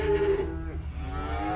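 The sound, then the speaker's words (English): A cow lows loudly at a cattle auction in the small town of Marana, about 45 minutes north of Tucson, on a hot day: a long, sustained moo with a harmonic drone that holds steady through the whole moment, with no voices present. “It's really hot, and you can smell the cows when you get there.”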